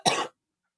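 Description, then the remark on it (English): A single sharp cough, fairly loud, a brief harsh burst that cuts off quickly into silence. “you're just constantly in a flux of coughing for your life and ingesting whatever air can come in.”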